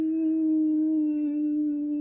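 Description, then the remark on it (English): A person holds a long, steady wolf-like howl for about two seconds, a single sustained vocal note at moderate loudness with no talking around it. “Are you howling like a wolf right now?”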